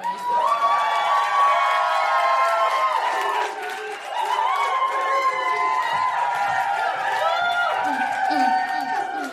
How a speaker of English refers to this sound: Hello, beautiful audience. Please clap, boom, cheer.